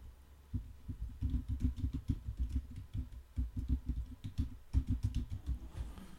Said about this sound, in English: Hold on. I got to get this even better footage. Hold on. Goddamn computer. Keyboard.